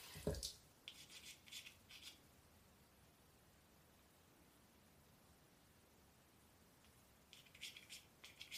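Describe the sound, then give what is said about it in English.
Water runs steadily from a tap in a soft, continuous hiss, with a few brief clinks and splashes near the start and again toward the end. No one speaks. “I need to add some water.”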